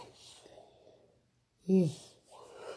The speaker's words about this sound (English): Please excuse all the yawning, guys. I'm still sleepy,